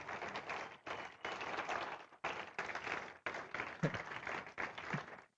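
An audience claps steadily for about five seconds, a dense crackle of many hands with a few brief lulls where the applause dips before swelling again.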